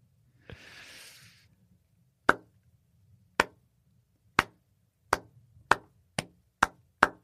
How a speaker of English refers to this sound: Is that a slow clap?